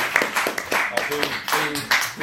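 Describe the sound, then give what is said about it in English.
An audience at a panel event claps in a brief, uneven burst as a panelist is introduced, with sharp overlapping slaps of moderate loudness and some voices murmuring underneath. “You can clap.”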